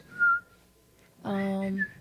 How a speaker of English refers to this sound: I wish I could whistle. I've never been able to whistle.